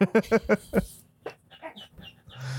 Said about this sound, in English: Yeah, those are my ducks chirping in the back. Okay. They're literally like right there, like right off to the side of me.